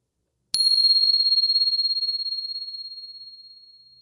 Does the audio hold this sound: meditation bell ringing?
yes